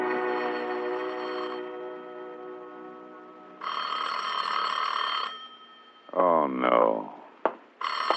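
A loud telephone bell rings in a long jangling burst, then starts ringing again at the very end, after a sustained musical tone fades out; it is Philip Marlowe's phone in the radio drama The Adventures of Philip Marlowe.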